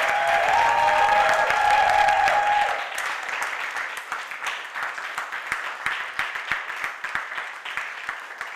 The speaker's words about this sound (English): If we could just give a round of applause one time for Pastor Ayo and Pastor Susan.